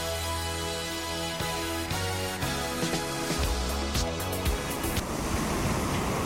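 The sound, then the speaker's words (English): Sea waves wash steadily against cliffs in the Jamaican sunshine beneath a sustained musical bed; the music fades near the end, leaving the broad hiss of surf alone. No one speaks. “Imagine relaxing in the Jamaican sunshine as the sea gently kisses the cliffs.”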